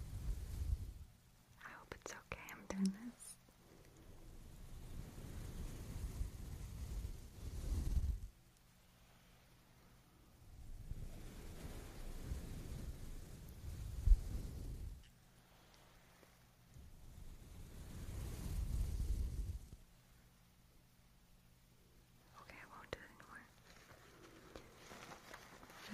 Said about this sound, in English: We have these brushes. They sound pretty good on the ears. I'll be very gentle.